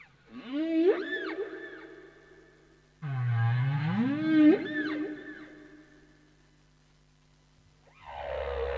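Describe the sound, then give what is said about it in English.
Humpback whale song: two long, sweeping moaning calls with rising and falling harmonic tones, separated by a short pause, then a third call beginning at the end. Loud, with no voices. “there's a young woman who's been doing a lot of study of humpback song, and she's shown that the humpbacks pass their song from a west to an easterly direction across the Pacific.”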